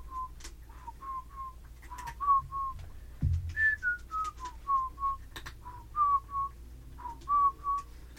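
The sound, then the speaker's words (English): Someone whistles a tune, a steady stream of clear, mid-pitched notes rising and falling in a melodic line, some short and some held, with no talking over it. “We start off strong in these episodes, but that's still not the song that's stuck in my head.”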